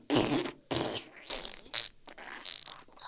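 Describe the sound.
A series of short, raspy fart noises in a toilet, around six spluttering bursts with brief gaps between them, fairly loud, with no talking over them.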